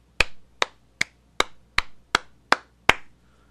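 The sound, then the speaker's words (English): Eight sharp hand claps from one person applauding a Defy wrestling card, in a steady, even rhythm, each a crisp bright smack with a short tail, moderately loud with no one talking. “Let me give it just a little clap.”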